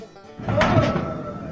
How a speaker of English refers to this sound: Yes, is the sound of an old man moaning. Oh, how far we've come! Yeah, again, this is a door, and it's huge right now on social media.